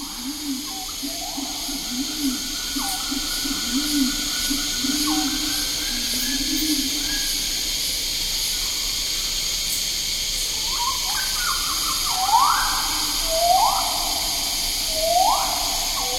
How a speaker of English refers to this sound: We leave you this week with pulsing cicadas, hooting pigeons, swooping rifle birds, and gurgling friars. All recorded near Treetop by Stephen Feld, one morning in the forest on Mount Bosavi, Papua New Guinea.